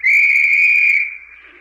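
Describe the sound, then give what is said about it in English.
A single loud, sustained whistle blast held steady for about a second on a white beach where over 1,000 skin divers are gathered, then trailing off into quieter background noise. No one speaks. “On that whistle, 1,000 snorkels were slurped into place.”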